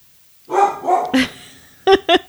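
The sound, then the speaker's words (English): A small orange dog barks, a quick run of three yappy barks followed by a short pause and two more sharp, high-pitched barks. No voices are heard. “This could be the dog barking interlude.”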